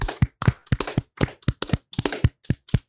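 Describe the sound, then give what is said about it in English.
A string of sharp hand claps, around a dozen in under three seconds, landing in uneven bursts and clusters rather than a steady beat, with brief silences between groups. “And as we do at the end of every bracket, it's time to clap it out.”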